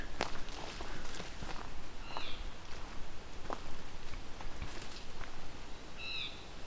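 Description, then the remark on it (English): A blue jay calls twice, brief harsh notes a few seconds apart, over crunching footsteps and steady outdoor background noise. “This sounds like a blue jay.”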